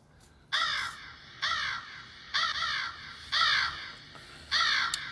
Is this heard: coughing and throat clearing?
no